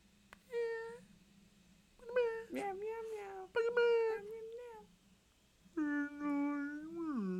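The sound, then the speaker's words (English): A voice imitates an orca whale with four high, wavering squeals, each rising and bending in pitch, separated by short pauses; the last call is the longest and loudest. “So now you're an orca whale making fun of me?”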